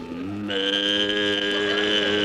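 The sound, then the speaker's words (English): A cow named Bossy lets out one long, sustained moo, a steady droning bellow with rich harmonics that rises slightly and holds loud for about two seconds with no talking. “Ah, there you are, bossy.”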